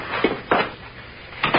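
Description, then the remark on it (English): A door shuts with a solid clunk, followed a moment later by a pair of quick metallic clicks as a key in the door is turned to lock it, with no one speaking. “Is there a key in the door? Yes. Good. Well, we're through here. Go ahead, I'll lock up.”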